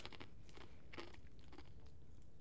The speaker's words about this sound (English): Can we just do, like, 30 seconds of us just chewing ice?